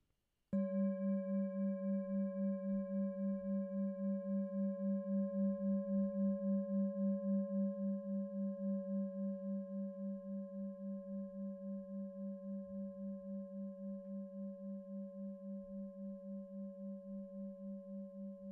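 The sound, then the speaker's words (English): A meditation bell is struck once during a guided meditation and rings on alone, a low, steady hum with a bright overtone and a gentle wavering pulse, fading slowly but still sounding at the end. “So if you just want to get yourselves comfortable and reconnect to the present moment through the sound of the bell.”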